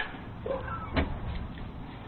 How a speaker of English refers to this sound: There's two boys here in Florida that were supposed to stay inside when they're home alone, but the camera caught them leaving the house. The Ring video doorbell busted them. Listen. Here we go. Door's opening.